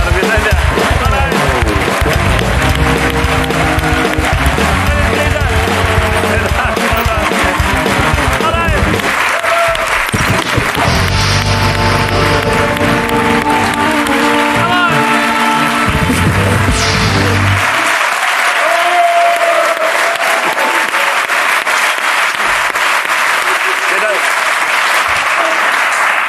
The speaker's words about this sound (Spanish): Estamos encantados, es una estrella de la música clásica. Un aplauso para Félix Klisa.